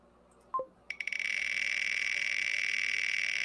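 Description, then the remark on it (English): A short two-note chime, then a prize wheel listing 11 teams starts spinning with a fast, steady stream of bright clicks that continues unbroken and fairly loud to the end, with no voices. “Spin the wheel, but just like we did last year.”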